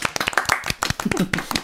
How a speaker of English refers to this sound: It's been wicked, and well done for winning the challenge. I think he deserves a round of applause, fellas.